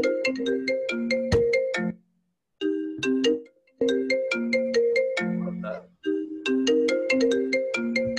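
A melodic phone ringtone plays loudly, a bright repeating tune of tonal notes with short silent gaps between phrases, and no voices over it.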